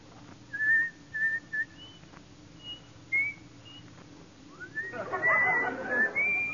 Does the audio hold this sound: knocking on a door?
no